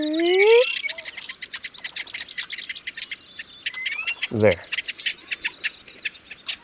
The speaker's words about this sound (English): There's a tiny secretive marsh bird hidden in those cattails making that sound. It's called the sora. We probably won't see it, but it's fun knowing it's down there making a living.